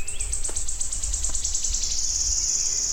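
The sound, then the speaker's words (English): A male wood warbler about 6 feet away sings: high, thin ticking notes speed up and run together into a long, shivering trill that carries on steadily over low background rumble. “That'll be about the best ever recording of wood warblers I'll ever get.”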